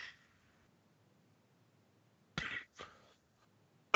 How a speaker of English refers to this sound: Both of us just fucking coughing over here. It's great. Great podcasting. Just clear out your lungs.